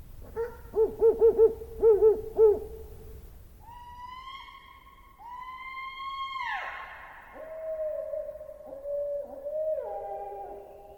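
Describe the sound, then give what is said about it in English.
An owl hoots in a quick rhythmic series of about seven soft, low hoots, followed by long, drawn-out tonal wails that rise and hold for several seconds. No one speaks. “Yeah, a woman called the police officer at 4 a.m. claiming an owl had...”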